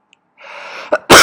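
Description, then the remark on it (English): A single loud sneeze: a drawn-in breathy buildup and a short catch, then an explosive burst that ends it. No talking. “Sorry, there's a sneeze.”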